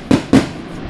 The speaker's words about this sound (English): Always with the fireworks on these celebrations.